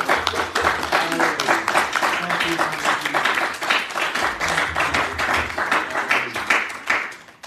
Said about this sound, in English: Let's give God a great big hand clap.